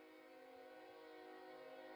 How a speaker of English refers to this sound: There will be no train whistles in the new heaven and new earth, I hope.